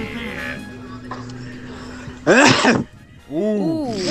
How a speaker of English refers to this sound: Hey, that sneeze had a part two. That sneeze had a sequel. Is that you? That was good.